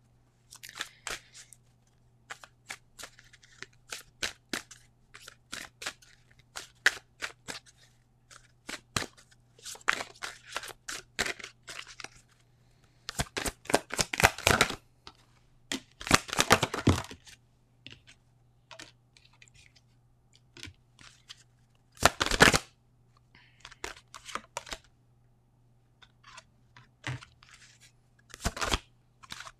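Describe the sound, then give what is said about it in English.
Playing cards being shuffled: scattered crisp flicks and slaps between louder, rapid riffling bursts, with no talking and a faint steady hum underneath. “I'm going to shuffle from my African Goddess Rising deck here”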